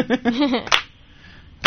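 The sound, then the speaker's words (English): A brief voice is followed by one sharp hand clap, then quiet, with another crisp clap just starting at the very end. “Give us a clap.”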